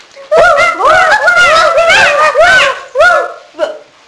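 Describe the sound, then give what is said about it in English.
Children's voices at a school assembly imitate Woof the sheepdog barking: a quick string of high, yelping woofs, loud, tumbling over one another before a couple of shorter yips trail off at the end. “I'm Woof, said Woof. And Woof woofed.”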